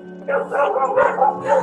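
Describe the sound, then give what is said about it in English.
A dog barks several times in quick succession, fairly loud, over a steady low electrical hum. “He can even hear dogs are barking.”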